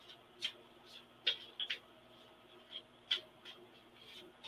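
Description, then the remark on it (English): Soft, crisp flicks and rustles of a deck of reading cards being shuffled and a card drawn, a handful of quick, irregular snaps, with no one talking. “And I will pull a card for Kristen.”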